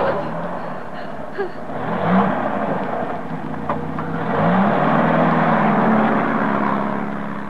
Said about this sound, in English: I'm coming. Try it again. You've got the choke right out, you idiot. It's a strange car to me.